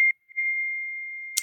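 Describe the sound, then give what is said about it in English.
A phone timer alarm sounds: a short high electronic beep, a brief pause, then one long steady tone at the same pitch, ending in a quick noisy click. No one speaks. “Uh-oh, that's our timer.”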